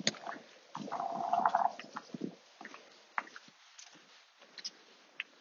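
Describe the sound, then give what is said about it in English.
A dog gives a low, rumbling growl lasting a second or so, fairly quiet and slightly muffled, followed by softer grumbling noises and brief ticks. No one speaks. “Dog through there, disapproving of that.”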